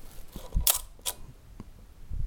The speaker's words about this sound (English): And I said, what did I say? F16 for 4 seconds. So we are at 16, so I'm on time. So I cock the shutter. Just gonna check that this works.